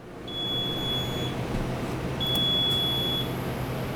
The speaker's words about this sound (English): We take you around the lab where alarms sound when power to the drying chambers fail, sending alerts to key staff on their cell phones.